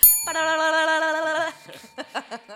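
A voice sings a sustained, slightly wavering "ding" in imitation of a promotional bell for just over a second, then stops abruptly, followed by a few short bursts of laughter.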